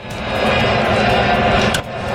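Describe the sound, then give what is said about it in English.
A loud, sustained roar from a packed stadium crowd as a ball is driven deep to right field, a dense wall of cheering voices that holds steady throughout, with a brief dip and a sharp burst near the end. “Just, the roar of the crowd, Smithy.”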